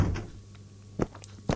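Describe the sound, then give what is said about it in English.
A video game door opens with a couple of dull knocking thunks and a brief creak, followed by another soft thud, over a low steady background hum. “Oh, there's another door here. Buy a plant pot. Alright, I can go in.”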